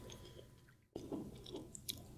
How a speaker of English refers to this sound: Sorry, I'm still eating this. It's all right. It's so good.